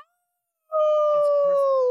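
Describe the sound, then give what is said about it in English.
After a moment of quiet, a single loud, wolf-like howl rings out, holding a long steady note that sags slightly in pitch, with faint murmurs underneath. “Who let the wolf out?”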